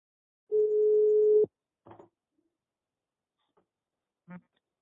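A steady telephone tone holds for about a second, then cuts off, followed by a couple of short clicks and a brief tonal blip as a phone call connects live on air on Gezin Korsan Radyo; otherwise quiet.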